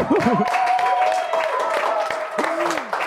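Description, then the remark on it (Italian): A burst of steady clapping fills the whole moment, with voices whooping and calling out over the applause at the end of a conversation. “Facciamo un applauso.”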